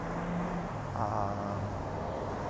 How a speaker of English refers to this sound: They probably got large expensive film equipment in them. And so far about five of these trucks have driven by in a convoy.